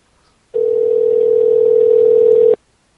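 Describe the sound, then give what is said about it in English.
A telephone dial tone heard while calling a woman back: one steady, unbroken low-pitched hum that holds loud and even for about two seconds, then cuts off abruptly. No voices are heard. “We're calling her back.”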